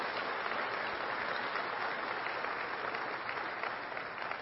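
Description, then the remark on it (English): A church audience applauds its children's ministry, WFR: a steady, dense, even wash of many hands clapping at a constant loudness for several seconds, with no voices rising above it. “How about a round of applause for our children's ministry, WFR?”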